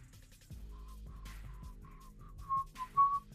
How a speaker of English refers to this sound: I feel like a college, like, whistling type of song